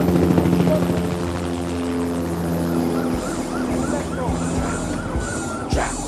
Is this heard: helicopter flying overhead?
yes